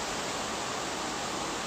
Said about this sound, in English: Whoa, we have some Caribbean rain outside.